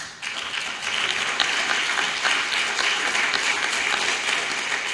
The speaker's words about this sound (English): ¿Podríamos dar un aplauso fuerte al Señor esta noche? Give a strong applause to the Lord this night.